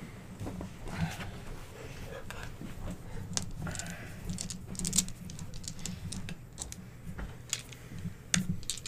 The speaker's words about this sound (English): Or no, what you do is you roll these dice in the middle, okay. All the unused dice.